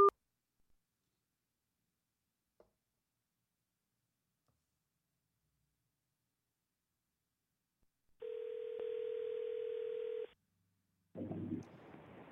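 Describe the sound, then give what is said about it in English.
A steady telephone dial tone from a dropped phone call hums for about two seconds after a long near-silence, then cuts off, followed shortly by a brief burst of rustling noise. No one speaks. “Your phone hang up, bro? I don't know. I think it dropped.”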